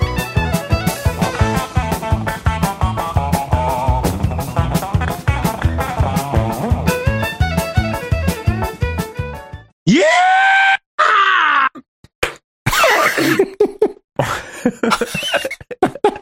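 A fast, twangy bluegrass guitar tune, a band's take on a bluegrass classic, plays with quick, steady picked notes for about ten seconds, then cuts off and gives way to loud bursts of groaning, yelling vocal sounds.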